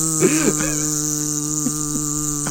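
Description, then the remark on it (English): A voice makes a steady, droning buzz like a bee, fairly loud for a few seconds, with a couple of brief throaty wobbles near the start. “Are you a bee? I'm a bee.”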